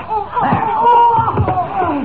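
Two heads knock together in a pair of solid, hollow thuds about a second apart, close and fairly loud, over a sustained vocal-like tone and background bustle.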